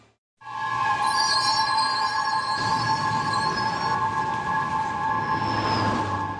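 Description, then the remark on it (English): A New York City subway train on the Broadway line rumbles along steadily with sustained metallic wheel squeal, high screeching tones held over a continuous low roar, loud throughout. “The target, the New York City subway system.”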